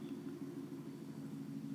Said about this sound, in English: this annoying ass helicopter is flying over us right now.